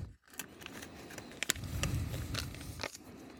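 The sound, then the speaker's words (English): Rustling and crinkling of Maui Wowie product packaging being handled for an ASMR recording, with irregular sharp clicks and crackles over a low steady background, no voices. “That's the packaging for the Maui Wowie.”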